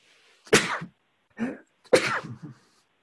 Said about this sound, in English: I don't have a cold, but maybe some hay fever. God bless you.